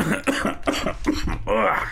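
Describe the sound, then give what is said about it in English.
A man coughs several times in quick succession, harsh, the bursts fairly loud and evenly spaced, ending in a rough, throaty rasp. “Yeah, he's just coughing.”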